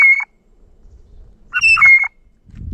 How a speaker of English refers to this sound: just put up like blue jay sounds, and I'll know it. Bird jay. Here we go. Bird jay call. Irritated blue jays.